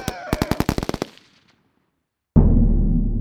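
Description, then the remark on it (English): Assault rifle gunfire, of the kind used with low-flying helicopters to kill feral pigs: a rapid burst of about ten sharp, loud shots with echoing tails, then a second of quiet before a heavy, low-pitched roar starts abruptly and continues. “But immobilized pigs bleeding from their eyes and dying for weeks in helpless pain bring too much outcry, and the poison is phased out in favor of low-flying helicopters and assault rifles.”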